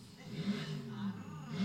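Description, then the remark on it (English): A short, low engine growl rumbles steadily, rising slightly at moments like a brief rev, with a faint hiss above it. “Oh, she did a little growl.”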